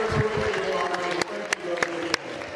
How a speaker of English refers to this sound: That's really a touching sight right there. That's really touching. Fantastic sight. Gets a standing ovation from the crowd.